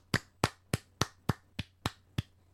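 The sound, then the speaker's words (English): A short round of applause from what sounds like a single person: eight sharp, evenly spaced, crisp claps over a faint steady hum with no talking. “And as always, we give you our round of applause.”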